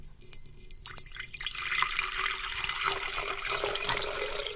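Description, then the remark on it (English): Liquid pours steadily into another pitcher, starting with a few splashy trickles and building into a continuous, bright, hissing stream, with no talking. “I'll pour it back in the other pitcher.”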